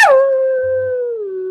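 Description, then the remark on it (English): A person imitates a long, eerie howl, one sustained wavering tone that slides slightly downward and holds steadily, loud, with no other sounds around it. “As you're pondering whether you should go upstairs or stay in the room, you hear a dreadful howl from outside.”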